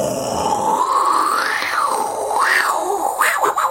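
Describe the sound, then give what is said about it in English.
A voice imitates hawking up a massive loogie, a big wad of phlegm: a loud, continuous throaty rasp lasting a few seconds, rising and falling in pitch with gurgly swells, with no words spoken. “So you think it was like one of those massive loogies?”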